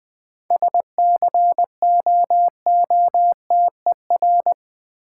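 Morse code at 20 words per minute spelling out the word "scooter": a steady, mid-pitched tone keyed into brisk dots and dashes in clear letter groups, with no voices.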